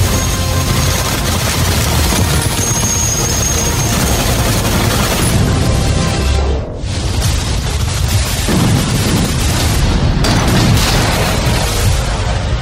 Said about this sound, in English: Boom, crash, explosion. Did y'all catch it? Yeah. Hell yeah. I did.